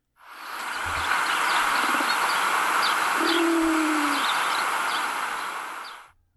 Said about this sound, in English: Another description of this call in that Kaufman book says the song is a slow descending series of cooing notes.